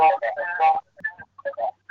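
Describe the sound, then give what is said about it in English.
A thin, tinny voice comes through a speakerphone line, its broken syllables smearing and repeating faintly as an echo bounces back, with brief gaps between the muffled bursts. “your phone is echoing. Maybe you want to get it off the speaker.”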